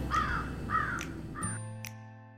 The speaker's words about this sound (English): Says the crow. Wake up.